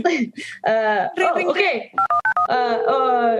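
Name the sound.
telephone dialing tones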